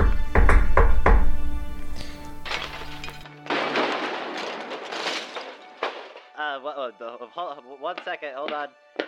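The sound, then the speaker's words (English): A vizier knocks on a door: several heavy, hollow knocks land in quick succession, followed by a rushing burst of noise and then a voice speaking. “There are three windows that face outwards, and the vizier walks up to the door and knocks.”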